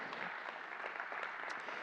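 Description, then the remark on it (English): A crowd claps steadily, the dense patter of many hands filling the space at a fairly loud, even level with no voices breaking through, clapping in response to a preacher's call. “If that's been you, would you give a hand clap, a hallelujah, a yay, man?”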